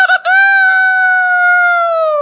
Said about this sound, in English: And then the next thing Peter heard. Cock-a-doodle-doo! Cock-a-doodle-doo!